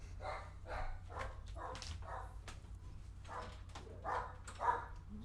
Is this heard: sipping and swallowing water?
no